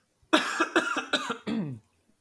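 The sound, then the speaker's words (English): A person coughs and clears their throat in a quick burst of several harsh hacks, ending with a longer raspy throat-clearing sound, with no talking. “Sorry, I just like cannot clear my throat.”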